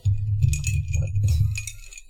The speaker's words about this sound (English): What are you doing? Are you saving the ice cubes? Well, I don't know how to take them out otherwise.